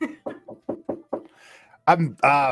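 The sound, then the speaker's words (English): A rapid series of about seven short knocking sounds, apparently made by a voice imitating a knock at a door, followed by a brief burst of laughter. “There's a knocking at the door.”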